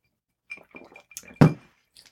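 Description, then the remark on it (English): Cocktail glasses clink together in a quick toast: a scattered run of light taps, then one louder, fuller clink, with a faint ringing note lingering beneath. “we can still give it a sip and see where we're at with it. Fuck yeah. Cheers. Gentlemen. Cheers.”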